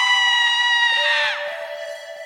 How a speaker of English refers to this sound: Oh, now it's time for Women Screaming.